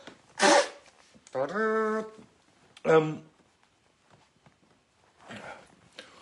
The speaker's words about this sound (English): Excuse me, I've got a blow my nose.